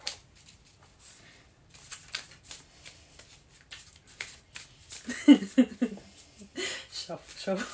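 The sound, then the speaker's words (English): A stack of white playing cards being shuffled, with a run of quick papery riffles and taps that grows busier partway through, while a voice briefly murmurs or chuckles in the middle. “I'm going to shuffle some of the white cards.”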